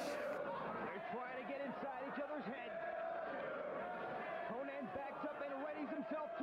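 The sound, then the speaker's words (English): A large arena crowd at a wrestling match chants in unison at a wrestler, many voices rising and falling in a steady repeated rhythm, loud and continuous with a dense roar of cheering underneath. “This crowd is chanting, Sandman's going to kill you, to Conan.”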